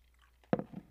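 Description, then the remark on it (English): A sharp crunch as an ice cube is bitten, followed by a brief grinding crackle, then quiet. “And I am crunching out an ice cube.”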